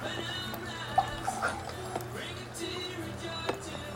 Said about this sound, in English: So wait, do you not trust my ability to pour water? No, you can go for it. You don't trust my ability to pour water. Thank you. I don't trust your ability to pour water. I'm doing it perfectly.